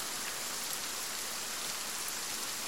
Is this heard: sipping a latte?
no